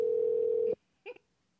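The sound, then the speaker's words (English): A loud, steady electronic ringback tone from a phone call that goes unanswered hums for under a second and cuts off abruptly, followed by a brief, fainter blip, with no one speaking. “She's not even going to answer.”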